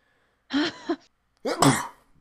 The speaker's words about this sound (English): I have to sneeze.